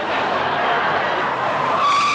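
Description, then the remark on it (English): Car tires skid with a loud, sustained rubbery screech lasting a couple of seconds, rising into a sharper squeal at the end. There is no talking. “Hey, easy with that car. That one's mine.”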